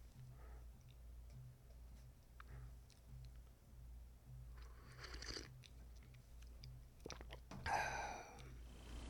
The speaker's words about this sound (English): Quick sip of tea, boss. Don't mind me, boss.